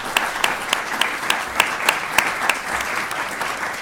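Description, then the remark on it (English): An audience applauds steadily for a few seconds, a dense wash of many hands clapping with a few sharper individual claps standing out, moderately loud with no one speaking. “So if you could please give her a round of applause.”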